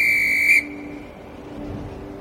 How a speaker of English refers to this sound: was whistling for everyone to gather around.